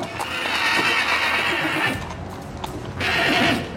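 A circus horse lets out a loud, high-pitched whinny that stretches for nearly two seconds, then after a brief pause a second shrill neigh rises again, unaccompanied by voices.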